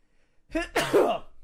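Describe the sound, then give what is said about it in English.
A single loud sneeze: a brief breathy intake followed by an explosive, noisy burst that trails off quickly. No talking. “So pardon me, I'm about to sneeze.”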